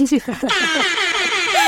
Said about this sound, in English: That's your first DJ Airhorn sound effect of the episode, and well-deserved, well-deserved.